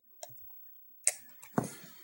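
A few quiet, irregularly spaced keyboard clicks, three soft taps spread over about two seconds with silence in between, with no talking.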